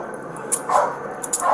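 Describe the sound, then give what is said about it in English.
A police dog barks in a few quick, sharp bursts over a low steady background hiss, fairly loud, with no one talking. “After police made repeated requests over a loudspeaker system for the suspect to come out unarmed or a dog would be released, he never came out of hiding.”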